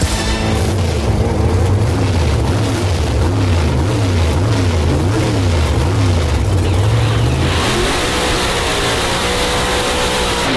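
A loud drag racing car engine roars, its deep pitch climbing and dropping repeatedly as it revs through gear changes while accelerating, then surges into a harsher, broader blast near the end, with no voices.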